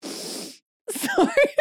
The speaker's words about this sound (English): Sorry. It had just been better if you sneezed. I couldn't quite sneeze. It just got itchy.